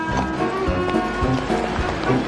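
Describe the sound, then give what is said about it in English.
Horse hooves clatter in a quick, uneven rhythm as the horse gallops away, taken off by someone, the sharp strikes standing out over a dense, busy background of noise. “Come back with that horse!”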